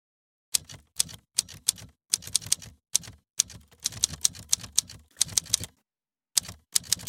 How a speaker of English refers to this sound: Think of an old-fashioned typewriter rolling out a Hollywood movie script. Hear the clickety-clack of the keys hitting the paper, the rumble and ting of the carriage as it swipes across the page, the hypnotic rhythm and the sound of the keys,